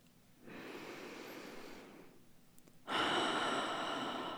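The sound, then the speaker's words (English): A slow, deep breath drawn in, a brief pause, then a louder, longer exhale, with no talking. “Go ahead and take one in and out.”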